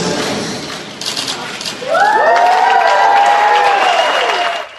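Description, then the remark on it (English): A crowd applauds steadily while loud cheers and whoops rise over the clapping, the noise swelling after a couple of seconds and holding strong to the end. The crowd cheers the Bank of Canada's unveiling of the new $10 bill featuring Viola Desmond, on International Women's Day. “A big cheer for the new $10 bill featuring Viola Desmond, unveiled today by her sister.”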